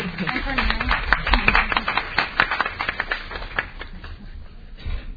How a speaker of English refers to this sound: So I do want to say thank you and want to actually start off with a round of applause for them.